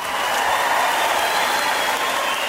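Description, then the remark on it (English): A steady burst of dense applause, added as a sound effect, many hands clapping at once in a continuous wash of sound at an even, fairly loud level, with no voices over it. “Round of applause. We'll put those sound effects in.”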